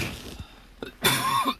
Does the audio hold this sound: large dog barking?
no